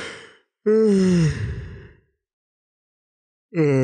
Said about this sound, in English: I'm yawning.